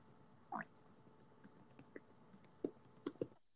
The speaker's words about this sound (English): Are you, like, typing? What are you doing?